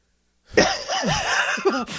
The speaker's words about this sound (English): There's the coughing. There you are. Yes. I was coughing. I didn't hear it enough. I thought it would be more coughing. Okay. It was just normal coughing. Okay. My cough, usual. Cough, cough.